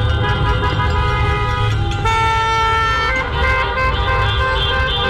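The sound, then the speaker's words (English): Several car horns honk continuously and overlap, loud, forming a sustained blaring chorus over the low rumble of engines and traffic at a car caravan protest. “They did a car caravan protest.”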